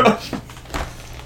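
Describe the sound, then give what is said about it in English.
A door thuds and rattles with a few short knocking bumps over about a second, fairly loud, like it is being opened or shut roughly. “Man, I sure hope they fix that damn door.”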